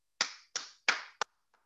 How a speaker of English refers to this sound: You go ahead and clap the hands right there, hallelujah.